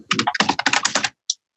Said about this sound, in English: you're going to have to mute your mic. Your typing is coming through your microphone. Oh, yeah, yeah. My tablet was right beside my keyboard.